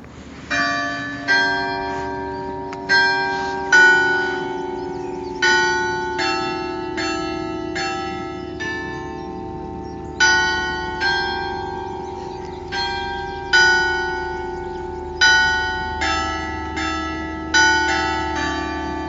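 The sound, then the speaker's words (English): Large basilica bells ring out the tune of Ave Maria before chiming the hour, a slow, stately melody, each struck note ringing and decaying into the next, loud and resonant with a lingering hum beneath, and no voices. “The basilica bells ring the tune of Ave Maria before chiming out the hour.”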